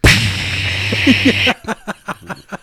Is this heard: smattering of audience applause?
no